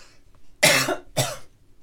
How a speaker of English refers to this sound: I don't know what's happening. Talking about emotional stuff makes me cough sometimes.